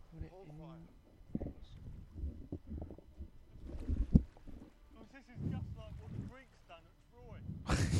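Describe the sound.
A boat moves across water, its steady rushing and wind-buffeted rumble running throughout while voices talk over it, with a louder burst of noise at the very end.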